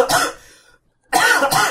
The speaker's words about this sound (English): Are you just sarcastically coughing? No, I was dying. There's no such thing as a sarcastic cough.